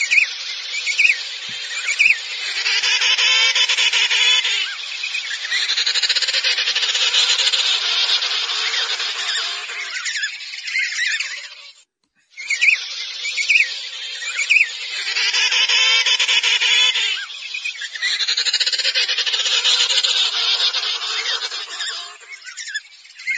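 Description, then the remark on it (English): Loud, dense emperor penguin colony calling: overlapping chirps and harsh braying cries from many emperor penguins, continuous with a brief pause near the middle before the clamor resumes. No talking. “If you'll bear with me, I will play some of the chirping and braying because it is definitely unique compared to the other penguins or probably what you'll see in the Disney movie.”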